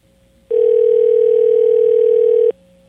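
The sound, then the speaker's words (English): A telephone dial tone as the show Car Care for the Clueless places a call to a listener from Florida: one steady, unbroken mid-pitched hum that swells loud for about two seconds, with a fainter version of the tone just before and after. No one speaks. “So let's call Fred.”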